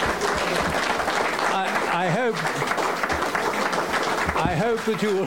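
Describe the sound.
A crowd applauds steadily, a dense, even wash of many hands clapping at a fairly loud level, with scattered voices calling out over it.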